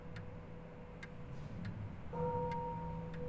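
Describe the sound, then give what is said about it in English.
A clock ticks slowly and steadily, five or so crisp clicks spaced evenly apart, over a low continuous hum that grows slightly louder partway through. “The quarter was so long that he was once more convinced he must have sunk into a doze unconsciously and missed the clock.”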